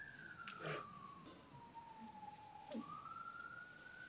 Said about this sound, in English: Don't you like the way the siren is saying, "Yeah, that's right, see Paris first"?